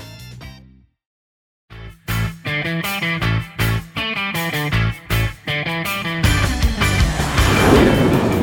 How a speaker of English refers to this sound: Clancy, did you hear that jet overhead? We're getting closer. How could I not hear it? It made the whole car shake.